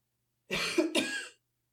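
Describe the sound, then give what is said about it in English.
Two quick, harsh coughs in close succession from a person covering their mouth with a hand, fairly loud, with no talking around them. “I'm gonna pull my hand back after that to like cover my mouth and cough.”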